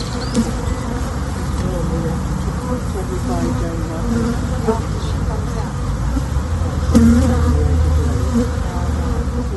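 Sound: honeybees buzzing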